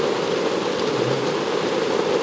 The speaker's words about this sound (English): Wow. This is a lot of rain falling down, people.